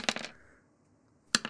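Dice rattle and clack across a hard tabletop in a short burst as they are rolled for a free reroll in a tabletop game, then a quiet pause, then another quick clatter as they tumble and settle again.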